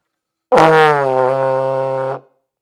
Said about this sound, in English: Did you hear the trombone? I know I heard the trombone. I have no idea where it came from.